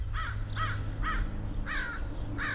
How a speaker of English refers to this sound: Crows! Crows! She pointed above them, and they heard the familiar rough voices and saw the black wings go by.